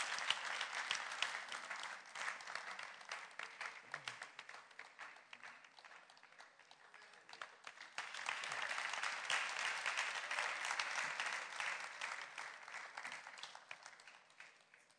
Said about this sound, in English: Pastor Dami, let's put our hands together for Pastor Dami. Let her come. Let's clap.